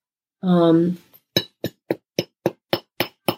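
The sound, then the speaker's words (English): A short voiced sound opens, then small massage hammers from Tongren Shop tap eight times in a steady, even rhythm on points for circulation: crisp, sharp knocks of equal loudness spaced about a quarter second apart. “And, you know, these hammers can also be great for metabolism and loosening up the neck.”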